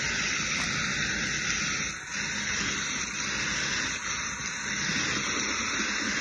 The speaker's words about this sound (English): And I'm just kicking back, sitting here on the cruise ship. Man, oh man, is it pouring outside. Whew. Good Lord.